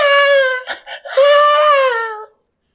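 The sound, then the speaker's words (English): A voice imitates how a woman being chased screams: a thin, high, wavering wail held for about two seconds with a brief break and breathy catches in the middle, then cut off, with no other talk. “Because when she screams, she's like,”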